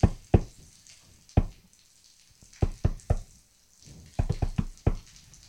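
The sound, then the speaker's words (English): Sharp knocks on a door in the sewers come in uneven clusters, a couple, a single rap, then quicker runs of three and four, over a steady faint hiss with no voices. “And there is a door. And they knock on it.”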